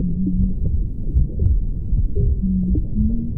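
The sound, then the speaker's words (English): A muffled, low heartbeat of a mother thuds steadily beneath a dense whooshing rumble, with faint tonal hums drifting through, as heard by a baby inside the womb. No one speaks. “Rhythm is there right at the start of our hearing, because we're going to hear the heartbeat of our mother very strongly.”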